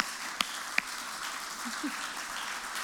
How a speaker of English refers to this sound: So let's give Dave just a round of applause.